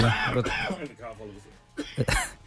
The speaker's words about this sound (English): … is off over there to cough up a lung.